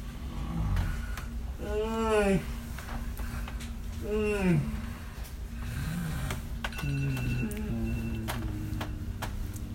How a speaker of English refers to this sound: Okay, wasn't that a crazy snore? Unbelievable.